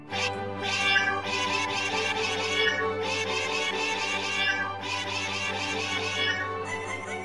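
Several cats meow over and over, overlapping calls stacking into a continuous, busy chorus with a steady low hum beneath, fairly loud throughout.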